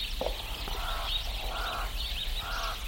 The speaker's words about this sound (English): Birds greet the day in the small rural town of Newitville.